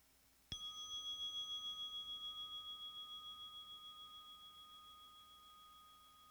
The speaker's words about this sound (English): And I'm going to ring the bell.